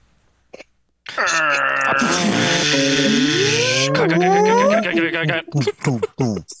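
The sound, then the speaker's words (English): On a count of three, several voices together imitate a creaking vault door opening, a loud sustained groaning wail with rising and bending pitches lasting about four seconds, followed by brief laughter and chatter. “On the count of three, get ready to make your vault door sound.”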